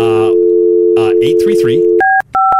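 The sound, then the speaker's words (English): A steady telephone dial tone hums while someone talks briefly, then a couple of short, sharp keypad beeps ring out as a phone number is punched in, a number that turns out not to be in service. “The number you have dialed is not in service.”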